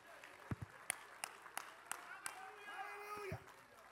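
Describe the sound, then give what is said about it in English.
An audience claps hands in a steady, rhythmic beat, about three sharp claps per second, while voices sing and call out underneath. “Come on, somebody clap your hands and lift your voice right now.”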